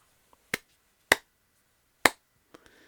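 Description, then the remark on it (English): A slow, sparse golf clap: three crisp, isolated claps spaced unevenly apart, followed by a couple of fainter taps, with no voices. “Yay, golf clap.”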